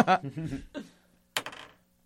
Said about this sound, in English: Like, my first die roll of the night. Woo! Yeah, roll them dice.